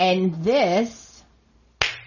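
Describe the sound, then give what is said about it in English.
A voice rises and falls briefly, then after a short quiet pause Hope strikes Flo with a single loud, sharp open-hand slap that cracks out, crisp and sudden, with a brief trailing ring. “And then you hear the slap heard around the world.”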